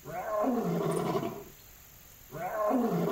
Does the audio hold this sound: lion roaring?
yes